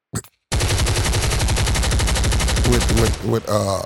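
Sustained rapid machine gun fire, a fast steady rattle of loud shots lasting a few seconds, with a voice breaking in near the end.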